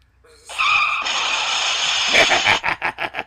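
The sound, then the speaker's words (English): A car crash sound effect played from a soundboard: a loud, sustained tire screech lasts about two seconds, then breaks into a burst of crunching, clattering impacts as a car crashes. No voices are heard. “You got car crashed.”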